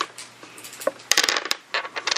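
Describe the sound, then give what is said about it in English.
Four dice rolled for damage tumble and clatter across a hard tabletop, a quick burst of sharp rattling clicks that settles briefly, then skitters again, with no talking. “Four dice for damage.”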